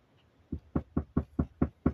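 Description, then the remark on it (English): A quick run of seven firm knocks on a door, evenly spaced and fairly loud, beginning after a short quiet pause with no voices. “Someone's at our door.”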